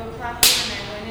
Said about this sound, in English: So I'm just going to do, like, a hand-slapping sound.